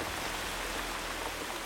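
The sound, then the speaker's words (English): A dense, steady wash of heavy rain from a super outbreak storm across the south hisses evenly throughout, loud, with no pauses or voices breaking the constant downpour. “With the immense amount of rain that accompanied the super outbreak storm, rivers all across the south began to burst their levees.”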